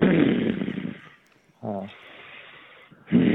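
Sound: man growling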